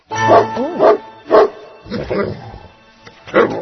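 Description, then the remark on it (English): A puppy barks loudly, a handful of short, high yapping barks in an uneven rhythm, some rising into whiny yips, with brief pauses between them. “Oh, I didn't see him there. What a dear puppy he was, too.”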